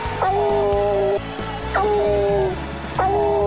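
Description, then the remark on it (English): Smokey, the bluetick coonhound mascot of the UT Vols, lets out three long, loud howls in quick succession, each starting with a sharp rising yelp and holding a steady, slightly raspy tone over a low constant background rumble. “Smokey's howl's pretty loud at the games. It's long and it's kind of raspy,”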